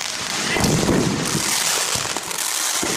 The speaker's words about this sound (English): Imagine throwing a great big 4th of July party. And you've invited all the people you love the most to come. And you've got everything prepared, and the food is there, and everything's, you know, ready, and the fireworks are going.